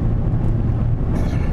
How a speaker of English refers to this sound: So we are on the road today. We are on our way to Williamsport. Vroom vroom. To visit a lot of different places. So you'll hear the car noise in the background as it's wont to do.